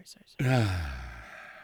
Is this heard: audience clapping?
no